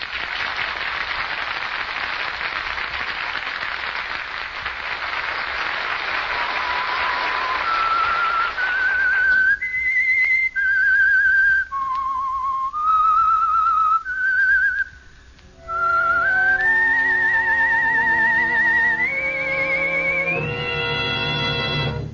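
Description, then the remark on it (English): A lone melodic whistle, the signature tune of The Whistler mystery drama presented by Meisterbrau, carries a slow, eerie tune of stepping notes, clear, emerging after several seconds of hissing, applause-like noise, with fuller tones joining beneath it near the end. “That whistle is your invitation to another Meisterbrau mystery drama presented by The Whistler.”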